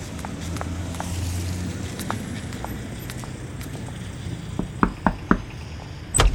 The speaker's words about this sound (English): Who is it? Someone's here? Didn't you hear the knocking on the door? There was knocking?